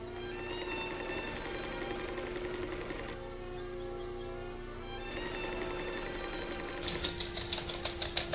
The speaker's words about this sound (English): She turns on the sewing machine, which is right below the open window.